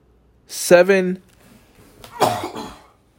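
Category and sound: human body sound, sneeze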